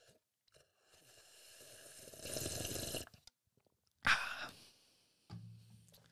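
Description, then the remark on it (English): A drawn-out slurping sip of water that swells for a second or two, followed by a sharp breathy gasp of relief and a brief low hum afterward. “Let me take a quick sip of this water.”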